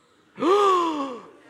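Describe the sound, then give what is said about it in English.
A single loud gasp from one person: a sharp, voiced intake that starts abruptly, holds for about a second, then trails off, with no talking around it. “Gasp! Right?”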